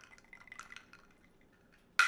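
A gin and tonic trickles quietly into a glass with faint fizzy, dripping bubbles, then a sudden sharp glassy clink at the very end.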